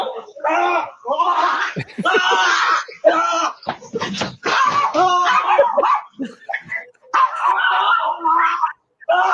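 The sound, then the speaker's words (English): A small Jack Russell terrier yaps and yelps almost nonstop, loud, high-pitched barks tumbling into whiny, drawn-out cries with only brief pauses between frantic bursts. “Jack Russell terrorizes you.”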